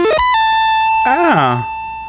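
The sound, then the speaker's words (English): A synthesized square wave tone from a studio square-wave generator: after a few quick rising beeps, a steady, buzzy electronic pitch holds for about two seconds. Midway, a brief swooping, voice-like sound rises and falls over it. “Most classic studios also have generators to create square waves.”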